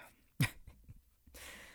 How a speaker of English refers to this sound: More nose blowing coming up.